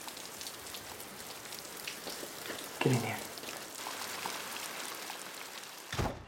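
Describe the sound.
Steady rain hisses throughout with a dense patter of drops. Partway through, a voice briefly calls out over it, and a soft thump comes near the end.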